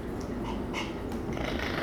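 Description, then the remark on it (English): A person imitates a cat's purr, a steady low rumbling drone held for a couple of seconds, with no speech over it. “Oh, you sound like a little kitty”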